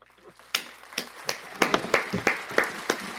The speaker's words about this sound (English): All right. Bye. Let's end with a clap.